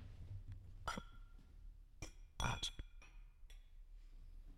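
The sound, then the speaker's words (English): Several glasses clink together in a toast, a quick cluster of bright, ringing taps, with a few scattered lighter clinks trailing off, with no talking. “Well, let's all get a cheers in. Cheers.”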